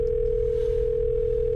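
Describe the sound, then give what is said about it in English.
A steady, unbroken telephone dial tone at the start of a recorded phone call holds at one pitch for the whole moment, loud, with a faint low line hum underneath and no voices. “So we actually have a recording of a phone call that demonstrates this point perfectly, and I think we'll go into it right now.”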